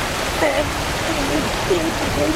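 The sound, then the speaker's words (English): A steady, loud rush of gushing water from a fire hydrant on top of a car fills the whole stretch without pause, with faint voices murmuring underneath. “This car is called Fire Hydrant Head because there is a fire hydrant on top of the car that is exploding with water every single second.”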